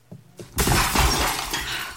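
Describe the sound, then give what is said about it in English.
A window pane smashes with a sudden loud crash as a man falls through it in the rain, followed by a sustained bright spray of shards tinkling and scattering for over a second. Two soft thuds come just before. “And the inspector fired in succession 4 times, each one sending him backwards with each shot, until he fell through the window.”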